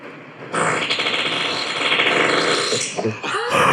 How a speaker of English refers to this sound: Guess the fart. Now this is my fart.